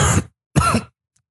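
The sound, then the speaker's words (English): A voice imitates two harsh, rasping coughs of the wounded character Lassite, who has fallen to the ground with blood on his chest. The coughs are fairly loud and separated by a brief pause, with no other talking around them. “You hear him coughing still.”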